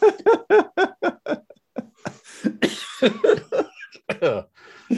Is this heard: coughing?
yes